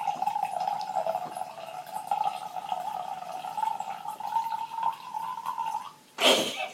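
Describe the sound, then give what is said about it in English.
A steady gargling of wine in the mouth to aerate it, bubbling continuously for about six seconds, then ending in a short sharp burst like a forceful exhale or spit. “I was just trying to get a good aeration.”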